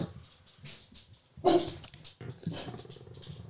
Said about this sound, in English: You should leave a barking noise.